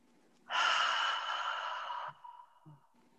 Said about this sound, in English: Get quiet, focus on your breathing. So let's do that now. Let's just take a deep breath, everybody.